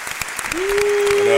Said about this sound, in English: Round of applause.